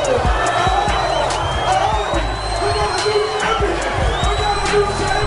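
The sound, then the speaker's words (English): A big crowd cheers and whoops loudly and continuously in response to a rap battle verse, with high shouts and whistles rising over a dense roar of voices for the whole stretch. “It is a big crowd. Did you hear that? I mean, he got quite the response.”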